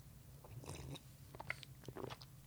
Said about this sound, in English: And with that being said, I'm going to take one more sip of this tea.